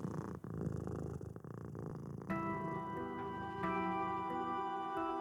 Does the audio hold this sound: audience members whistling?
no